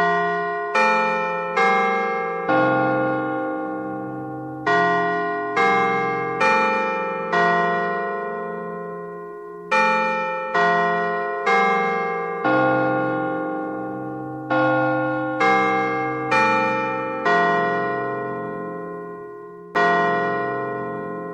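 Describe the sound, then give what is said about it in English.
A clock bell strikes the hour, chiming a steady melodic sequence of ringing strikes at differing pitches, each tone loud and shimmering before fading into the next, with no voices. “But at the sound of the clock up, Scrooge looked about him for the ghost, and saw it not.”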